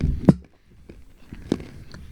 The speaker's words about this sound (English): You hear that crunch? That's how you know it's a strong nut. Oh, these are good.